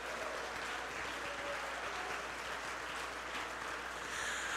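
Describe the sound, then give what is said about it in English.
A church audience claps their hands to the Lord in steady, dense applause that holds at an even, loud level throughout, with no voices standing out above the clapping. “Oh, I wish you'd clap your hands to the Lord.”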